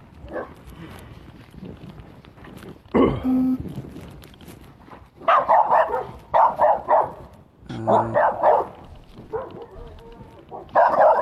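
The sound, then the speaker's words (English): A dog barks in loud, rapid bursts as it tries to chase another dog away, with sharp clusters of barks coming in quick succession after a quieter stretch of background rustling and an earlier short yelp. “He's trying to chase this other dog away.”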